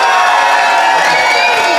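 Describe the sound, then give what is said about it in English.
A studio audience bursts into loud, sustained applause and cheering, voting for the side they think won a debate, a dense wash of clapping with whoops and shouts running unbroken for the whole stretch. “But if you think Josh and Fanshawe won the day, applaud now.”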